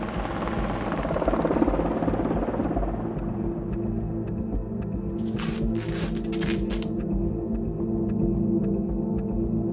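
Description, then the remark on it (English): Helicopters' heavy, throbbing rotor drone fills the scene, steady overhead as they circle quickly, with a brief burst of rattling noise partway through and no voices. “The helicopters are starting to circle quickly because they really want to get out of here.”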